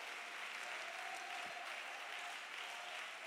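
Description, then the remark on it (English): An audience claps their hands to thank God for a preacher, in steady, dense applause that fills the whole stretch without pause, with a faint sustained tone humming underneath. “Hey, you ought to clap your hands and thank God for a preacher.”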